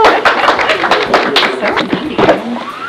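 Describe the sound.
A small audience claps in a burst of quick, uneven hand claps, fairly loud, with some voices mixed in beneath the clapping throughout.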